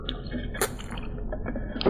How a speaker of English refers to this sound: You can just hear the slurping. I know. On the mics.